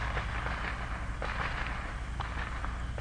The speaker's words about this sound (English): Somebody's got some fireworks, but there's a big white building right next to us. That's got to be out at the lake.